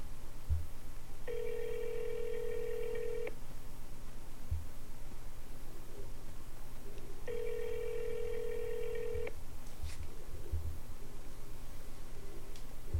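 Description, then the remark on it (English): A telephone ringback tone purrs twice, each burst about two seconds long with a long gap between, heard faintly over a low steady hum as a call to a Subway restaurant goes unanswered. “Subway, I don't know if they answer their phones.”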